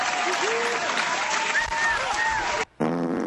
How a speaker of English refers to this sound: It's the one with the zero. So we got... let's applaud that. Yay.